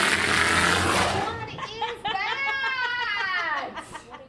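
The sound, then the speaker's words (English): Sivukok, a young male walrus being trained, blows a loud, breathy burst of air through his nose, followed by a run of squeaky, wavering whistle-like tones that rise and fall in pitch. “The display is followed by a surprise blown from his nose.”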